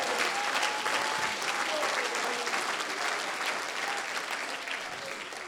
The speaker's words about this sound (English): Give the Lord a hand clap right now.